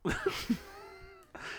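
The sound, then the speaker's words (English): A hungry hairless cat lets out a long, drawn-out meow, starting with a few rough, scratchy bursts, followed by a brief second cry. “You would breastfeed a hairless cat. I mean, the cat was hungry.”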